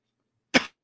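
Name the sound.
cough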